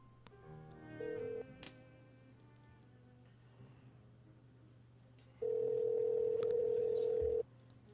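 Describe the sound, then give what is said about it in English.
A telephone line as someone dials to call their grandmother, with a short electronic beep, then a steady dial tone holding for about two seconds, fairly loud over a constant low hum and faint background noise. “Well, are you dialing?”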